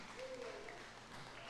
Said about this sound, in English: Oh, that was weak. You call that applause? My goodness.